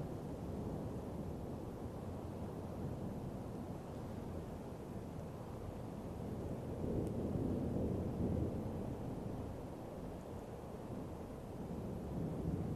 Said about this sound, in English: Hearing the roar of the thunder, the music of the rain.